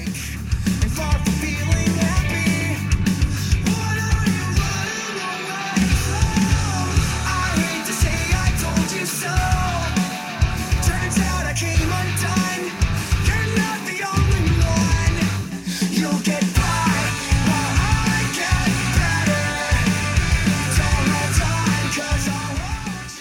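A new loud rock song plays throughout, with dense full-band instrumentation, a driving rhythmic low end and a few brief drops where the bass cuts out. Shouted vocals may run over the music.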